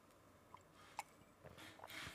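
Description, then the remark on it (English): A quick sip of tea: a few soft wet mouth clicks, then a brief airy slurp toward the end, quiet and with no one talking. “Sorry, I just had a quick sip of my brew there.”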